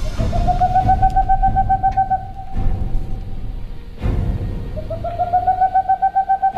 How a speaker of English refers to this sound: Some call him Tengbom's owl, after Swedish naturalist Gustav Tengbom. Some call him Richardson's owl, for Scottish naturalist and explorer John Richardson. But he's better known as the boreal owl.